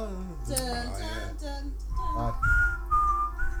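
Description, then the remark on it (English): Someone whistles the eerie X-Files theme tune, a short melody of sliding and sustained high notes, fairly clear over a low steady hum. “So this is the X-Files for you, so.”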